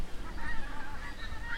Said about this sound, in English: You can hear overhead, those are the Canada geese migrating. So they leave Scotland at this point and head off. Big summer making down a really long, yeah, they're making a lot of noise and they're all up there in the big V.